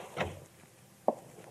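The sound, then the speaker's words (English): A door opens with a soft wooden creak and rattle as a man warily enters, followed about a second later by a sharper knock-like thud, both fairly quiet. “Chadwick and I, in an adjoining room with the door cracked, watched his wary entrance.”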